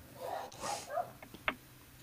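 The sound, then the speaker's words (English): A neighbor's dog barks a few times in quick, uneven bursts, followed by a couple of sharp yips, with no talking. “Basically, my neighbors have this dog that's always fighting with the cat.”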